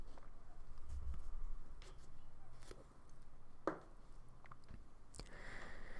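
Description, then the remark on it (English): Quiet mouth sounds of someone sipping coffee from a cup, with soft slurps and swallows, a brief clink near the middle, and low background noise with no talking. “And I'm going to pause here while you guys think about that, and I take a sip of coffee.”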